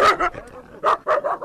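Domestic dogs, kept by the Oromo to guard their homes and herds, barking in a quick, irregular series of about five sharp, loud barks, with a short pause in the middle and no other sounds.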